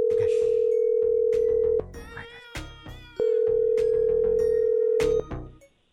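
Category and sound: signal or alarm, phone call ringing tone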